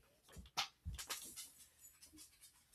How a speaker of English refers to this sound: This is the downside about filming up downstairs. Dogs bark at everything.